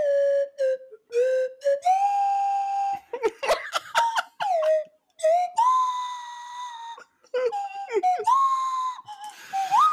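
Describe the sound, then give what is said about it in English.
A slide whistle plays a wobbly tune of sustained notes that swoop up and down, with a few quick breathy squeaks in between, fairly loud. “I'm going to do the slide whistle along with them.”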